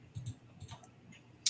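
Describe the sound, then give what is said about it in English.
Soft ticking of a timer as a one-minute countdown starts, a handful of quiet clicks spaced unevenly over a second and a half, ending with a sharper click, with no one talking. “Got 1 minute on the clock.”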